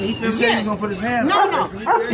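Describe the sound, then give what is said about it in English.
Dogs bark and yip repeatedly in quick, uneven bursts, fairly loud, with indistinct voices mixed in underneath, during an ALS ice bucket challenge. “This ALS, there's dogs barking, helicopters flying over.”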